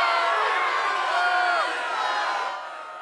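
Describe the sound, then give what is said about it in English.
A large crowd boos loudly, many voices merging into a steady, dense roar with a few rising and falling tones, then easing off slightly toward the end. “You get a boo, bitch. We booing you.”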